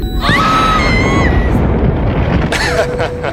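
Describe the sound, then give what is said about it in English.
An escape pod crashes down with a loud, sustained rumbling roar, high whining tones sliding over it early on, then a fresh burst of crunching impact noise near the end. “Warning, impact detected.”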